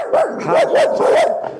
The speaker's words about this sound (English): Hush. The dog apparently has something to say. Go ahead. That's just Dory.